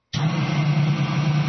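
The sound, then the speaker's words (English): A small electric coffee grinder motor, switched on with no beans in it, whirs steadily: a constant hum with a strong low drone and faint grinding rattle from the empty auger making contact, starting abruptly and running without pause. “That's mainly engine noise that you're hearing, plus a bit of the auger making contact with stuff.”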